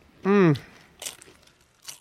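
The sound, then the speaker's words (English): A short voiced exclamation, then two crisp crunches about a second apart, like someone biting into a tortilla chip loaded with queso. “Oh, that crunch.”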